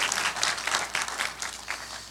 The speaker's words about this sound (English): So you see there are empty chairs here. No, go ahead and clap for that. Absolutely.